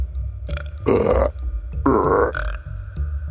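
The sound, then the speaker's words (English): A woman burps twice in quick succession, each belch loud and drawn out for about half a second, with brief quiet gaps between them and no talking, as a finger is hovered over a point between her ribs. “All of a sudden, she starts burping.”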